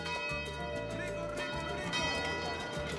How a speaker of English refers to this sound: During his stay in Manila, he fondly remembered the bells.